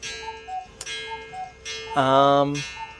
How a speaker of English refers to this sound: As typical with Hello, This is the Doom Show, the cuckoo clock has already interrupted me before I even spoke. Cuckoo clock has resoundingly told us that that's a yes.